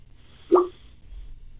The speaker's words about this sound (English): That was the that was that noise. That was the vodka hitting the that was the vodka hitting the bottom of the bottle. It sounded like bloop.